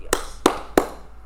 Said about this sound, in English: Yes. Today we're going to be going over how to clap like a cheerleader.